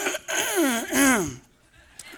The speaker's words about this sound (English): Let's clear my throat.